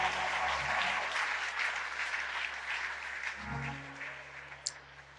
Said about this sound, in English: Now put your hands together and give the Lord a hand clap of praise.